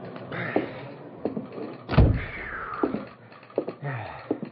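Heavy footsteps thump across a wooden floor as someone stomps into a sidetracked freight car that serves as a telegraph office. A door slides with a rumbling scrape and lands with a solid bang midway, followed by a few more stomping steps.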